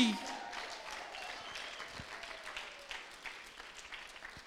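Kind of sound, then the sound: crowd, audience clapping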